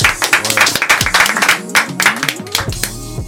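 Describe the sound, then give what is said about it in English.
A crowd claps steadily for a few seconds, dense overlapping hand claps with a few cheers and whoops mixed in, fairly loud throughout. “Can we clap it up one time, y'all?”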